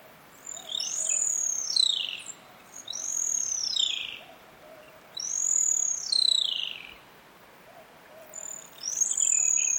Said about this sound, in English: We leave you this week standing in a tall forest in Australia. That's where Andrew Skioch recorded this pair of extremely rare animals called sooty owls.